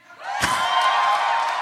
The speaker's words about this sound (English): Has anyone seen the movie yet? I heard it's good. Okay, now cheer if you think I will enjoy it.